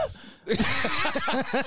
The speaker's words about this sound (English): And my laugh has got coughs in it and shit.